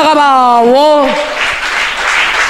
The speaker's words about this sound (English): Somebody shout hallelujah. And clap for the Lamb of God.